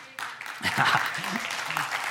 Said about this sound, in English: hey, make sure to clap at this point when I say this.